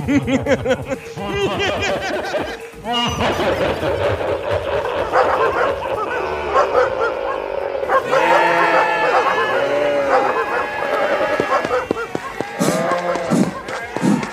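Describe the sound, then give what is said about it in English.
A loud, dense chorus of 101 hounds baying and howling at once as they are released to chase, their drawn-out overlapping cries rising and falling continuously for the whole stretch, unbroken. “Release 101 of my best youth-chasing hounds.”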